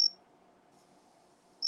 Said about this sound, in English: Even the crickets love it. Just listen to Jiminy over here.